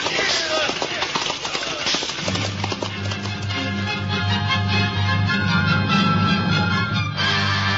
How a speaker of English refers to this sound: The London road stretched out under the horses' feet.